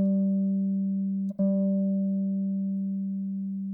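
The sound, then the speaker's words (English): A guitar's sixth string, fretted at the 15th fret and plucked fairly hard, rings out with a steady, mid-pitched sustained note. It is briefly choked and plucked hard again partway through, then keeps ringing and slowly fades. No one speaks. “If you try this out, if you pluck it, try to pluck this fairly hard, you can probably see this if you're watching the video, but the third string may start to vibrate.”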